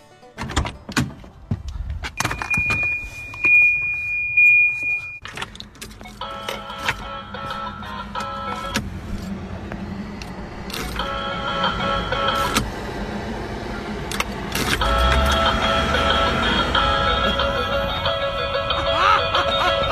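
A steady electronic beep, then a car door chime, replaced with a tinny synthesized instrumental version of a pop song, plays the melody in stepped notes, fairly loud, over car door clunks and faint mechanical hum; it plays when the car door is opened with the keys in the ignition.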